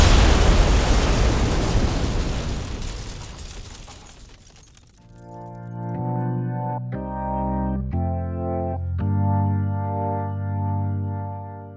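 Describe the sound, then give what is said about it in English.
A ticking bomb hidden in a teddy bear explodes in a loud blast, a roaring, rumbling burst that slowly fades over about five seconds, then sustained musical chords take over, shifting roughly once a second. “I think it's coming from the bear. Hold on. Bear? Frankie, get out of there. That's a bomb.”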